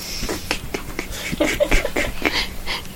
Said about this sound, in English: You hear the dog. Yeah. Of the claws.